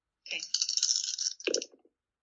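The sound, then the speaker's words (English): Dice clatter and rattle across a hard surface for about a second, a bright rapid series of clicks that ends with a few small settling taps, fairly loud with no talking; the roll comes up a minus one. “Ooh, that's a minus one on the dice, and my fast is plus two, so it's only plus one.”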